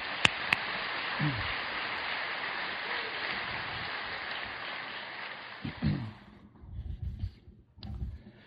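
A crowd applauds with steady, dense clapping for about six seconds, then it cuts off and a man's voice starts talking.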